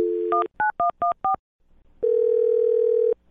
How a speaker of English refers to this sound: All right. I'll dial her phone number and try one more time, okay?